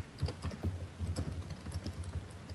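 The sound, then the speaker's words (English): Fast, vigorous typing on a computer keyboard, a dense stream of sharp clicky keystrokes with uneven rhythm, moderately loud, with no voices. “That's quite vigorous typing.”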